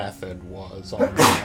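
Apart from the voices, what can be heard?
sneeze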